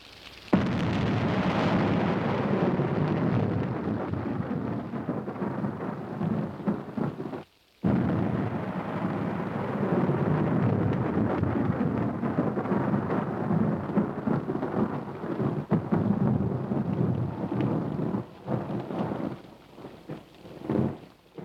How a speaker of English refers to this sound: We dissolve to a shot of a cloudy sky with thunder and lightning. It is quite literally a dark and stormy night.